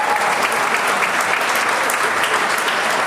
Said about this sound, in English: There's some applause. You like that?